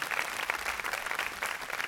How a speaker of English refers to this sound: Give God a big hand clap if I'm right.